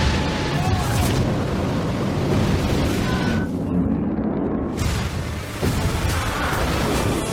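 A rocket engine roars in a loud, steady, rumbling blast that holds for the whole stretch, heavy in the low end, with a brief dip in the hissing top midway through.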